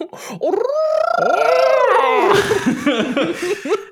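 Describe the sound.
A person does a whale impression in a Scottish accent, a long, loud, wavering voiced moan with rising and falling pitch, breaking into rougher, croaky sounds near the end.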